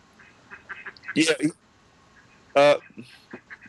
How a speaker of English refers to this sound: There are, believe it or not, my next door neighbor has chickens and ducks. You can totally hear there's a party happening. Can you hear the chickens and ducks? Yeah.